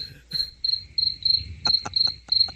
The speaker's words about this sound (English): Oh, I get the first crickets. Is that crickets? Yes, sir. Only the highest tech for you guys.